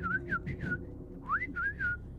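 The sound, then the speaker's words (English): A person whistles a few short, chirpy phrases in imitation of a parrot, with sliding rising and falling notes in two quick bursts separated by a brief pause, moderately loud. “I turned and stared at the parrot. She stared back at me and whistled a few times.”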